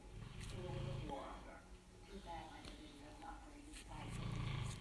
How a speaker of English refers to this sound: So my dog's snoring like a human being, laid out, very comfortable. He's really comfy.